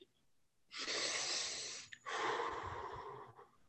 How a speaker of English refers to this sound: Some breathing exercise.